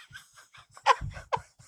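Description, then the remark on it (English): A quick series of exaggerated panting breaths, about nine short huffs in an uneven rhythm, fairly loud, with a couple of stronger gasping bursts near the end; a voice imitating heavy breathing. “It's such a shame that people have to breathe 24 hours, isn't it? Can you just do all your breathing between 2 and 4?”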